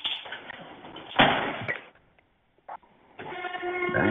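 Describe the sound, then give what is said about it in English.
Train-like rumbling and clattering noise, loudest in a brief surge, falls almost silent, then returns with a steady, droning horn-like tone as the rumble builds again. “Damn, sound like they're in a train, in a damn store.”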